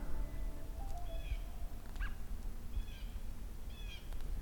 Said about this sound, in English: Got a bald eagle yet again going over. This is the third pass this specific bald eagle has done. I'm assuming it's the same one over and over again.